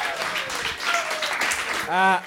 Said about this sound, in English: Oh, give him a round of applause for that one.